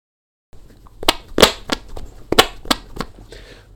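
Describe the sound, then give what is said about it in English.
A string of wet, squelchy armpit farts, about seven or eight sharp bursts in an uneven rhythm, fairly loud and alone with no talking. “She will do the armpit fart, which is a synthetic fart. It is fake.”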